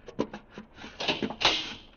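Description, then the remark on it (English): A door being opened: a few quick latch clicks, then a louder scraping swing as it moves, with no voices present. “Earthman, you will rise from your seat and open that door.”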